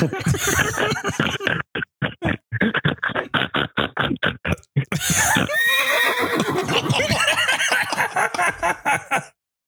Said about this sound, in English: I don't know what that horse is doing. That sounded disturbing.